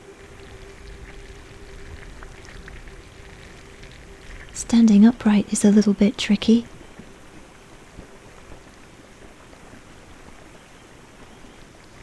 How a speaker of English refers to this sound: Swim over to stand underneath the waterfall. The torrents of water pound your back.